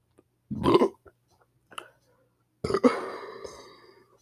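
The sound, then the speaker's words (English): A short, gurgling burp, then after a pause a longer, drawn-out belch that trails off, after drinking Sierra Mist soda. Both are fairly loud, with no talking around them. “Hold on, I just had Sierra Mist, so like I want to burp, so give me a second.”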